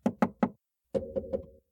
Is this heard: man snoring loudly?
no